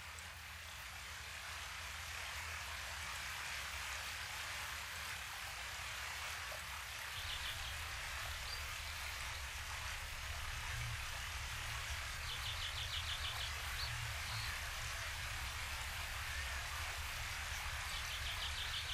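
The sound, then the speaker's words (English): Desert ambience in Saguaro National Park, near Tucson, Arizona: a constant, even wash of insect noise with high, rapid chirping trills rising out of it in a few short bursts, plus scattered faint bird chirps. No one speaks. “These are the sounds of the Saguaro National Park, very close to us here in the Tucson, Arizona area.”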